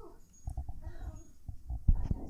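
Muffled handling noise from a microphone that has fallen: a series of dull, low thumps and bumps at irregular intervals, with a heavier knock near the end and no talking.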